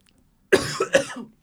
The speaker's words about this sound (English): You just need one strong cough.